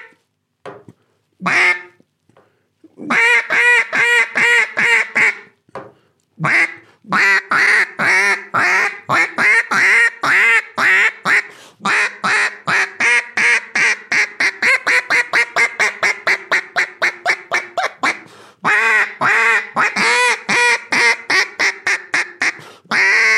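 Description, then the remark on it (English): A duck call imitating mallard ducks produces loud, raspy quacks: a few single notes, then a long rapid run that speeds up and fades, followed by another steady series of quacks. “And what you were doing, you were taking it, picking it up, and when you were doing a quack”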